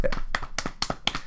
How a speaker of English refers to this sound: Golf claps for us. In fact, we give ourselves an inordinate amount of golf claps. Yeah, and golf pats on the back.